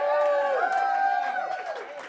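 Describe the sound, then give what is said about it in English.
A live audience at the Crimson Circle Show in Coal Creek Canyon cheers, with a long sustained whoop over scattered clapping and excited crowd voices, loud and steady throughout the short burst. “As you can hear or see, we are here with a live audience in Coal Creek Canyon, and this is one wild bunch.”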